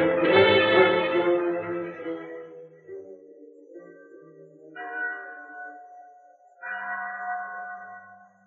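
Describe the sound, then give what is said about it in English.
The chapel bell at San Pedro tolls three times, the first stroke loudest and fullest, each one ringing out with long, humming overtones that linger between the slower strikes. “There was a bell in the chapel at San Pedro. When it rang, its clear tones carried over the plains for miles in every direction and sounded a message for both Indians and white people.”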